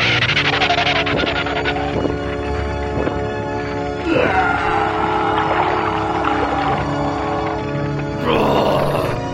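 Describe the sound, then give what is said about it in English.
A wet, retching vomit sound effect from a character who was still a little queasy, riding in the attack truck: loud, strained gagging and gurgling heaves that surge and break off in bursts, ending in a final splashing retch, with no talking. “Sorry about that. Guess I was still a little queasy. Change of plans. Swing by the 99-cent store first for a mop and some Febreze.”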